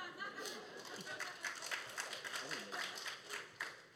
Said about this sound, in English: I noticed the applause for this is going down by each person, but I'm also from Portland.